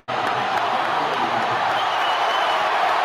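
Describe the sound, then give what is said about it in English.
A huge crowd at the Sphere in Las Vegas roars continuously as everybody stands up, a dense wall of cheering that starts abruptly and holds loud and steady throughout, with no single voice standing out. “Look at all the people standing up for that. Look, everybody is standing up. You'll hear a wave of people.”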